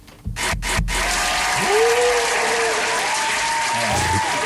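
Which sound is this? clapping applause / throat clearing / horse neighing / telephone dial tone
clapping applause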